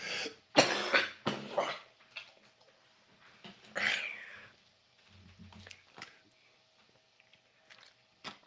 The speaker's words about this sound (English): I got a terrible cough.